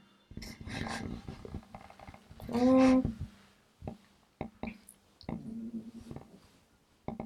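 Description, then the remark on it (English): A sleeping female dog named Sage snores in low, raspy rumbles, with one loud, drawn-out growly snore midway and softer snorts and short clicking breaths after it. “Sage is over there snoring, living her best life.”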